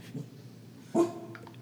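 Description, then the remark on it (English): A dog named Sasha gives one short, sharp bark that rings out briefly against a quiet background, followed by a faint, trailing whine. “Some barking we'll edit out.”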